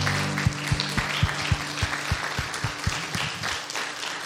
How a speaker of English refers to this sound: I also wanted to say, if you worked on VBS, if you had any part of it, will you stand up, please? Because I think you guys deserve, everybody deserves a round of applause.